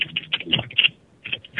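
Rapid keyboard typing, a quick run of sharp clicky keystrokes in irregular bursts with a brief pause before resuming, close and moderately loud with no voices.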